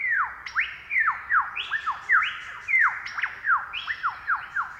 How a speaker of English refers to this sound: I love the sound of lyrebirds singing their flute song.